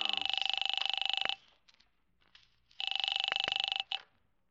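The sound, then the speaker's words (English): A telephone in the hall rings in two loud, buzzing bursts of a bit over a second each, with a short pause between, its trilling tone steady and high-pitched, followed by a brief quiet rustle. “Where's the phone?”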